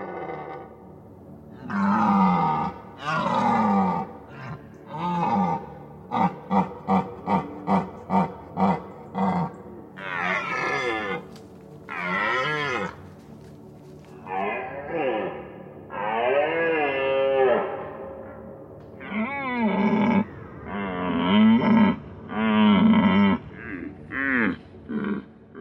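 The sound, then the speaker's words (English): European red deer stags roaring repeatedly, from the Roar of the Red Deer sound library by Ivo Vichich: deep, loud, groaning bellows with rough harmonics, one burst of rapid short grunts in a row, then more long drawn-out roars, no talking. “Roar of the Red Deer by Ivo Vichich Sound Libraries features roaring of the European red deer in woods, mountain slopes, valleys, etc.”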